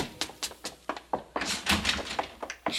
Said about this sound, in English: haven't I told you not to slam the door?